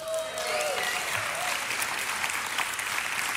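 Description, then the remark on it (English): Sustained applause from an audience fills the whole stretch, a dense, steady wash of many hands clapping at an even loudness, with a few faint whistles rising through it; the applause is for the speaker's wife on the couple's 24th wedding anniversary. “The clap goes to her.”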